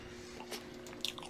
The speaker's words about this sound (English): So, yeah, the spaghetti and meatballs is it just smells like slop. I'm sorry, it sounds like slop.